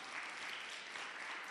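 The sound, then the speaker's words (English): A crowd of parents applauds in a steady, dense wash of clapping that holds at an even volume for the whole moment, with no voices rising above it. “Parents, clap for me, clap for me.”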